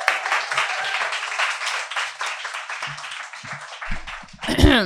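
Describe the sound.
An audience claps for a reader at a literary reading event, a dense, even patter of many hands that fills about four seconds before a voice cuts in as the applause fades.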